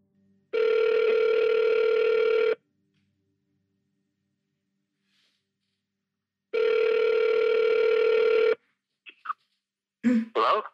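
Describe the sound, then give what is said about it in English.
Two long ringback tones purr over a phone line, each about two seconds with a long silent gap between, followed by brief clicks and a faint voice as the call connects. “I phone him immediately.”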